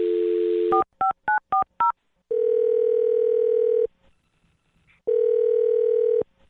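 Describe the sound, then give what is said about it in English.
A steady dial tone gives way to five quick touch-tone beeps as a number is dialed, followed by two long, even ringback tones separated by a pause. No voices are heard. “I'm going to dial the phone number right now and then let you do your thing.”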